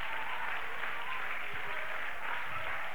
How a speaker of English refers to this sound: Clap your hands and shout yes to the Lord.